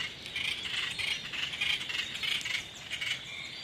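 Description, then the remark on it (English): A handful of hooked Pisonia seeds, which come in bouquets, is picked up and rattles and shuffles continuously for a few seconds, a dry, bright, crackly clatter with steady loudness and small pulses, and no voices. “Now you've just picked something up off the So these are Pisonia seeds.”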